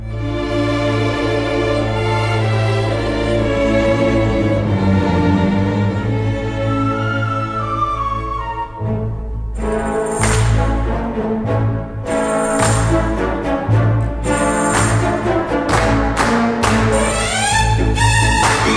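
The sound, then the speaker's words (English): An orchestral rendition of a folk wedding dance, opening with sustained strings over a steady low drone, then bursting into louder, rhythmic playing with crashing cymbals and percussion accents. No voices. “But it's cool to hear in an orchestral context, too. Here's a little bit of it.”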